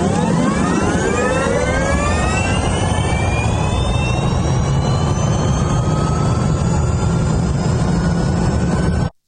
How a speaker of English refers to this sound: So he was sort of making the engine sounds.